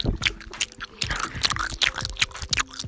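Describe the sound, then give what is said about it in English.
Wet chewing of food by a person, with repeated crunchy bites and smacking in an irregular rhythm, loud, with faint background tones and no talking. “That's me chewing.”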